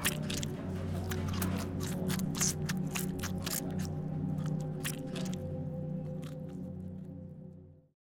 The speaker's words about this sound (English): Satisfied, he picks up one of the sandwiches, unwraps it slowly, almost lovingly, and then falls upon it with an animalistic snarl.